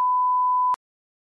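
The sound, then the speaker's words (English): A single steady quiz buzzer tone, a clean mid-pitched beep held for about three quarters of a second and then cut off sharply with a click, followed by silence. “Buzz.”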